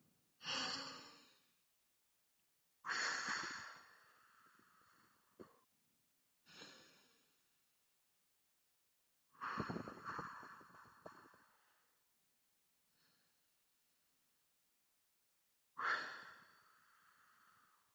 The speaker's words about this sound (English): The hand on your stomach and on your chest is a way to gauge how you breathe. And it really is a great way to practice deep breathing so you can see how well you breathe. Now, for the 3-2-1 Anxiety Reset, start with 3 deep breaths.